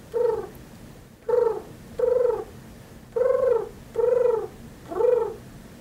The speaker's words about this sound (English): Do you hear him? It's an impressive pigeon sound.